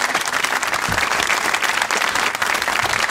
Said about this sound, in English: Ladies and gentlemen, thank you very much for coming. Please, a massive round of applause for my guest,